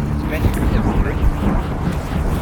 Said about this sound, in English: There's a storm rolling into Chicago right now.